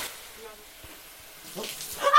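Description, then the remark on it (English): After a quiet stretch, water suddenly splashes and spills onto a hard kitchen floor while a pot is being filled, a short, loud rushing burst at the very end, with faint voices. “That was actually the sound of water, not blood, spilling on the kitchen floor.”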